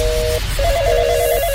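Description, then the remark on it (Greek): A telephone ringing in steady electronic tones, two bursts separated by a short gap, fairly loud over a low rumbling background with no voices. “Αυτό κάποια στιγμή, όταν θα ξαναμπεί αυτό το που χτυπάει το τηλέφωνο, θέλω να πω.”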